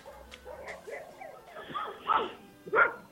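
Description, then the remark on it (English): A dog barks twice in sharp, loud bursts near the end, preceded by softer whines and yips, with some background voices. “This goddamn maniac dog.”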